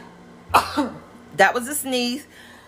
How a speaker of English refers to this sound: That was a sneeze. Excuse my sneezes. Like I said, my podcast is real and I'm not going to edit those sneezes out. It's just a sneeze.